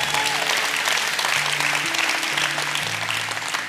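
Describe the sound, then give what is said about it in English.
A crowd claps steadily for several seconds, a dense, continuous patter of many hands at a fairly loud, even level, tapering slightly at the end, with a faint sustained tone underneath. “You can clap for that, that's pretty cool.”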